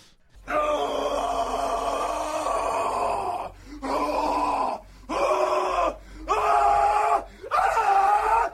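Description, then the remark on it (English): A loud, anguished Nick Cage horror-movie scream: one long sustained wail, then four shorter screaming bursts with brief gasping pauses between them, harsh, with no talking. “All right, so, and I guess for me, for my official review of The Marriage Story, I'm giving it a Nick Cage horror scream.”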